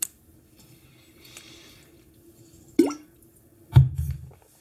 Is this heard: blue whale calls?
no